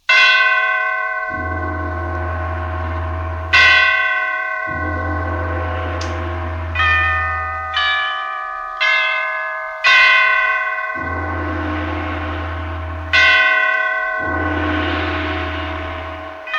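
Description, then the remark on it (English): The great church bells of St. Petersburg toll loudly in a slow, overlapping sequence as a requiem for Catherine the Great, each heavy strike ringing out and decaying over a deep, sustained hum, with no voices present. “Catherine the Great had just died, and the great bells of St. Petersburg tolled their requiem, tolled again the ascension to the throne of Paul the First.”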